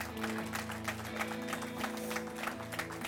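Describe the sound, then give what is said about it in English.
A church audience applauds steadily for a few seconds, dense overlapping claps, with sustained low tones humming underneath. “So some of you who are reluctant with your applause are asking the same question I'm asking.”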